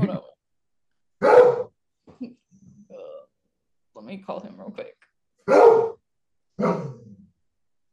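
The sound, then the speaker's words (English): A dog barks loudly, three sharp barks spaced a few seconds apart, while a person speaks briefly in between. “He's got to go get the dog.”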